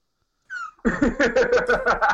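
A female cat lets out a short meow, then a quick run of about eight pulsing, throaty cries in a steady rhythm, fairly loud, with no talking.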